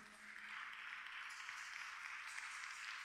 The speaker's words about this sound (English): As you are clapping for them, heaven will clap for you.